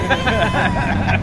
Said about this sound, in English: Whoa! That's a loud motorbike. This is so loud.